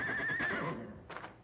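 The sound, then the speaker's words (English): A distant horse, Black Thunder, neighs, a wavering, high-pitched whinny that trails off, followed by a brief breathy snort. No one speaks. “That must be Black Thunder way off there. He's a mean one, all right.”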